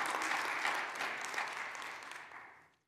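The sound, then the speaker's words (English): A crowd applauds steadily, many hands clapping in a dense, even patter that holds strong before tapering off and fading out near the end. “So let's give him a round of applause and say thank you.”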